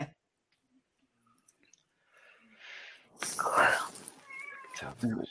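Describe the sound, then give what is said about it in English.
After a few quiet seconds, a cat lets out loud, drawn-out meows, one rising wail followed by shorter cries, with faint breathy noises in the background. “Whose cat is that?”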